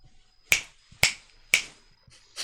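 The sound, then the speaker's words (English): Three crisp, bright finger snaps at a steady half-second pace, followed by a softer fourth snap after a short pause. No one speaks. “Right in there with that fucking snapping.”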